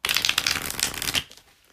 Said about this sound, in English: And when I ask the question to the cards, I like to ask before I even start shuffling, or while I start shuffling, because I want to be able to kind of meditate on that thought, on that question, while I'm shuffling.